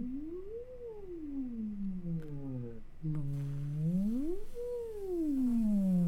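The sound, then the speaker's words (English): A single voice doing a vocal siren exercise slides its pitch up and down in smooth glides from low to high and back, rising, falling, then rising again after a brief break, trying to keep a steady buzzing vibration throughout, with no words. “So what you're looking for is a consistent siren, meaning a pitch glide from low to high and back down, maintaining the vibration.”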